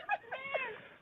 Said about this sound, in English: Did the cat just go meh?